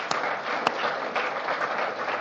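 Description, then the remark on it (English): A church audience applauds steadily for members who have been in the church longer than 15 years, a dense, even wash of many hands clapping at once with a couple of sharper claps standing out near the start. No one speaks. “Just give them a clap.”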